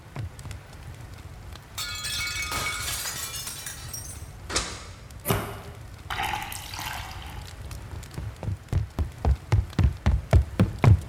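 Kitchen clatter as glassware clinks and knocks, milk is poured into a glass with a rushing splash, then a run of quick, evenly spaced thuds, like footsteps, grows louder. No one speaks.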